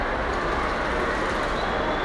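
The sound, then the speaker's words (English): A dense, steady roar of stadium crowd noise building as a player gets the ball ready to kick after a try. A broad wash of many voices merges into one continuous rumble that holds at an even, fairly loud level throughout. “Oh, the crowd's building.”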